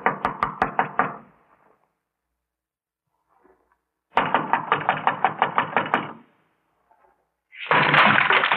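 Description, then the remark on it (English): Loud knocking on a door by police comes in quick bursts of rapid blows, pausing between bursts, with a final stretch that turns into dense, heavy pounding. No one speaks. “Come on, come on. Open the door. This is the police.”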